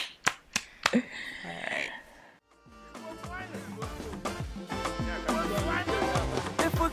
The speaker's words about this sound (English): Clap for myself.